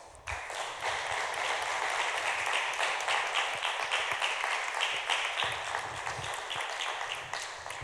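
A crowd applauds steadily, a dense wash of many hands clapping at once that stays loud and even for several seconds before easing slightly at the end.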